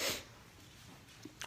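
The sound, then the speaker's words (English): A short, breathy sniff opens the moment, then a quiet pause before another sharp sniff right at the end, like someone with a cold and a stuffy nose drawing air in. “I got a cold, that's why I'm sniffing.”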